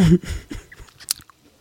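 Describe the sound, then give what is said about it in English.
Wet chewing of a piece of pear with a few crisp bites, a short burst of mouth noises ending in small clicks and smacks before trailing into near silence. “I was going to say, that took a while to figure that one chewing.”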